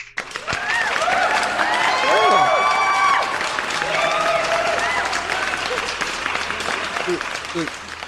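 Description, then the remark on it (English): An applause sound-effect drop: a dense burst of crowd applause with cheering and whoops rises quickly and holds steady for several seconds, broad and loud, with a few voices shouting over the clapping before it trails off. “Can we get an applause?”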